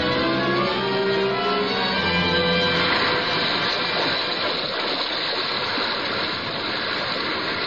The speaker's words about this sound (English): Suddenly the waters around them slowly swelled in broad circles and quickly upheaved. A low rumbling sound, a subterranean hum, and shrouded in a thin, drooping veil of mist, a vast form shot lengthwise from the sea.